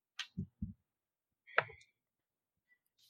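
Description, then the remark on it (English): A few quick, hard clicks land in a short burst, followed by a brighter clattering tumble as a die rattles across a tabletop, hits 20 and rolls back to 14. Fairly quiet, no voices. “Why are you taunting me like this, Dice? It hit 20 and rolled back to 14 again.”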